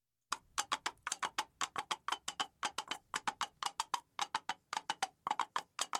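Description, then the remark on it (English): Two coconut halves are hit against a kitchen table to imitate a horse galloping, in a steady galloping rhythm, with sharp hollow knocks falling in quick repeating clusters like hoofbeats, loud and continuous with no talking. “It sounds like a horse galloping across the plains, but what you're actually hearing are two halves of a coconut being hit against the kitchen table.”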